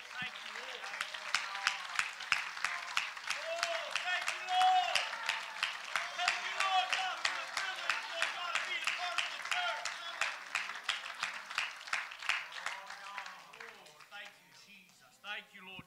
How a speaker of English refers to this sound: Let's just give him a hand clap of praise here today.